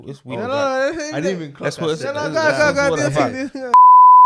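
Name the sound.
censor bleep over speech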